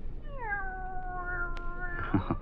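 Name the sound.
cat meowing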